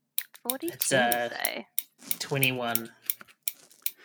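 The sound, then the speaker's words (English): Scattered sharp pen clicks, several irregular ticks spread across a few seconds, fairly crisp while a voice talks loudly over them. “What's that clicking noise? Who's playing with a pen or something?”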